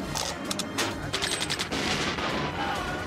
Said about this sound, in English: The ultimate tactical warrior, the Super Cyborg, comes standard with the Gatling gun.